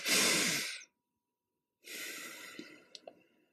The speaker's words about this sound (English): Sometimes it feels good to start with a few deep conscious breaths. You might try the double inhale, followed by a long exhalation.